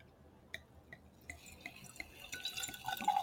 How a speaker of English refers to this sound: Oh, that's a smooth pour. I'm actually so keen for this drink right now.